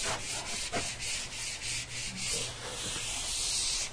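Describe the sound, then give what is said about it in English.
A board being wiped with an eraser: steady, hissy rubbing with repeated back-and-forth strokes lasting the whole four seconds, fairly loud and with no voices. “Let me erase this.”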